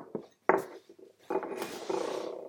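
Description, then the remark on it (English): About 5 grams of dry tea leaves rustle and patter into a ceramic teapot, a few sharp clinks and scrapes followed by a longer crackly rasping pour, fairly quiet with no talking. “So I'm going to go ahead and put 5 grams, more or less, into this teapot.”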